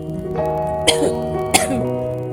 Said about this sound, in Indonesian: sorry agak batuk dikit nih.